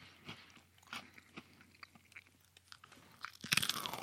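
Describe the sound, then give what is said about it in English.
Crunching and chewing of an Oreo cookie with its layers stacked into a double stuff, with repeated crisp bites and mouth sounds, building to a louder, denser crunch near the end; no talking. “That had such a soft chew to the center of it.”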